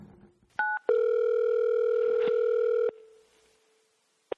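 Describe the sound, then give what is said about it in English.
A landline telephone's steady dial tone hums loudly for about two seconds after a brief beep, then cuts off, leaving quiet and a single sharp click at the end. “You still have a landline?”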